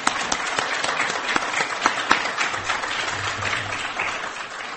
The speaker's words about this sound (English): Anyone who's a veteran who has served, just want to give you some applause.